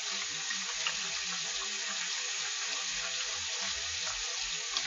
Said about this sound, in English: Now, to save dishes and time, I rinsed out that container that I had the applesauce in, and I'm going to use it to crack my eggs in